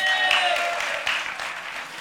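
A room of people clapping together in a steady, dense wash of applause that stays loud throughout, with a few faint tonal whistles or squeaks mixed in near the start.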